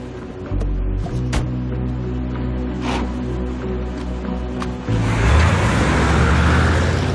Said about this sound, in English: and then drive and come to this kind of screeching stop right on a really specific mark. I think we actually had a stunt guy do that U-turn.